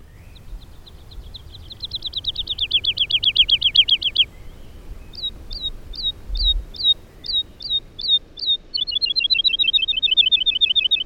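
A bird sings clearly in open countryside of trees and grass, with the biggest city in Europe just over the hill on the northern horizon: a rapid trill, then a series of evenly spaced bright whistled notes, then another fast trill, over a faint low outdoor rumble.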